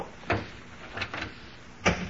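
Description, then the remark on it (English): An office door is carefully eased shut with a few soft, separate clicks and muffled bumps spread over two seconds, fairly quiet, with no voices. “careful, Maxie, when you close the door”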